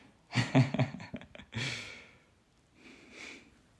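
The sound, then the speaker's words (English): A dog snores: a rattling, snorting inhale followed by a breathy hiss, then a softer, fainter breath a moment later. No one speaks. “My dog is snoring.”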